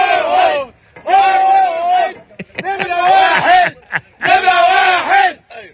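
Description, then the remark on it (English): An Egyptian team on the tugboat Mashhur, which helped get a stuck ship free, chants "Mashhur is number one" in unison: loud repeated shouted phrases arriving in four rhythmic bursts separated by brief pauses, voices rising together with excited energy. “They're chanting Mashhur is number one.”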